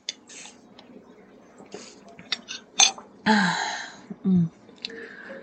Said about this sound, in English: Yes, sorry, metal noise. I know that might be annoying, but we're trying to help the planet by not using regular straws. And I like straws. So metal it is.